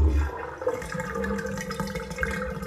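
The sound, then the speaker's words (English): Water gurgles and rushes steadily down a bathtub drain as some bath water is let out so the tub does not overflow, a continuous churning with a low mechanical hum, no voices present. “I'm draining some water so I don't overflow the bath.”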